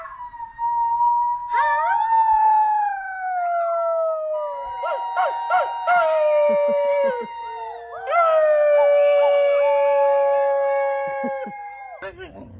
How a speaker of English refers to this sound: Kids, dogs, everyone in the videos were howling. But at what?